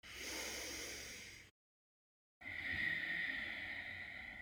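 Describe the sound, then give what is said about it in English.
Two long, steady whispery breaths through a constricted throat, mouth closed, like fogging a mirror, each with a soft airy hiss, separated by a brief silence, done as a deep-breathing exercise. Fairly quiet, with no talking. “So it's going to feel like you're fogging a mirror in front of you with your mouth closed.”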